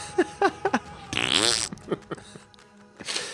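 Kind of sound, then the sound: sound effect, fart sound effect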